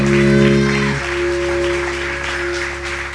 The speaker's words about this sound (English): Hallelujah. Give the Lord a big round of applause one more time.